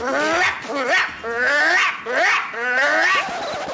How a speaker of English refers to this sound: The aggressive bark is